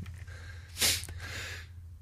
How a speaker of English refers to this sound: I'm going to sneeze. Hang on a second.